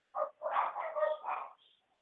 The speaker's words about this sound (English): We've just got somebody that's come to the door, would you believe? And the dogs are going mad. Do apologize.